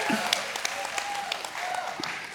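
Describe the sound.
Light, scattered, polite golf clapping from a church audience during a sermon, soft and restrained, with a faint tonal hum and murmuring voices underneath; a modest clapping rather than an enthusiastic ovation.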